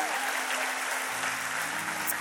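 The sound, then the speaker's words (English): An audience at Impact Church claps steadily for the worship team, a dense, sustained wash of applause at an even level, with faint low sustained tones humming underneath. “How about a round of applause for our worship team once again?”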